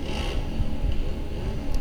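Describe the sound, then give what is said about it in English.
A motorcycle engine rumbles steadily, a low, rough drone with a gritty, scraping texture that holds at an even loudness for about two seconds. No one speaks. “He'd be like, "That's not how that motorcycle sounds."”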